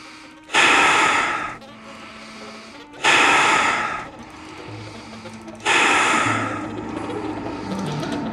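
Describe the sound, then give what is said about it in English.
A woman imitates heavy, raspy breathing: three loud, harsh gasping breaths a few seconds apart, with quieter rough breaths between them. “And I said, what did the breathing sound like? She didn't know the story about the breathing. And she mimicked it.”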